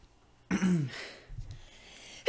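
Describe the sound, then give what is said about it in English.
A single sneeze bursts out suddenly, a voiced, falling cry riding on a sharp noisy blast, followed by softer breathy sounds as it fades. “Oh, I have to sneeze.”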